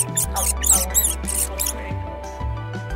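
A rat squeaks in a quick series of shrill, high-pitched chirps during the first half, fading out afterward, with a steady low hum running underneath throughout.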